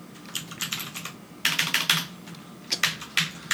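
Rapid clicking of keys on a computer keyboard, with bursts of quick keystrokes separated by brief pauses and no voices.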